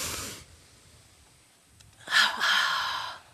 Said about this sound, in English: And let's do five of the deep breathing exercises, double breath.